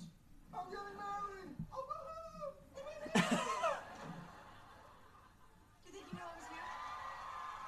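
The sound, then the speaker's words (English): A studio audience at a sitcom taping in London erupts in loud cheering and whooping, high excited cries rising over a dense wash of crowd noise and applause that swells, eases briefly, then builds again. “That applause has got to be the best ever.”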